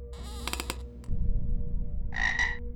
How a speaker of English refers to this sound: It's a frog, or toad, I don't know the difference. But it was fat and green and looking up at us from the bowl of this disgusting skiddy toilet.